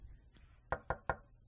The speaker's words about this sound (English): And I do feel like knock on wood. I don't know if there's like anything real wood around here. One sec.